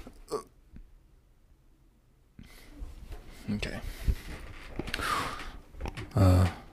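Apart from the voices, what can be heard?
dog coughing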